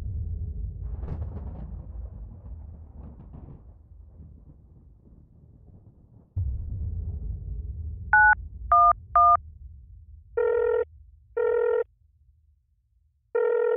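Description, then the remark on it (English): Three quick telephone keypad dialing beeps as an emergency call is placed from a home phone, followed by repeated ringing tones in long steady bursts with short gaps. A low rumbling, wind-like noise fills the background beforehand, and no one speaks. “what's the contact number you're phoning from?”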